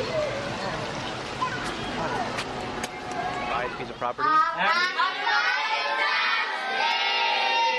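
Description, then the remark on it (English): Children shout and chatter as they play in the rain, over a steady wash of hissing rain noise. Partway through, high, excited young voices rise and carry on loudly, with someone also speaking. “Kids playing in the rain.”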